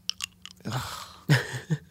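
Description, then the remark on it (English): Someone chewing on a cough drop: a few sharp clicks, then three louder, wet crunching bursts at an uneven rhythm, with no talking. “Well, that, and then also that you have sugar in your mouth. I do. I have a cough drop in.”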